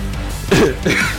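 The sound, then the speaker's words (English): Two short throat-clearing coughs, one right after the other, fairly loud against a low background hum, with no talking around them. “Cough, cough,”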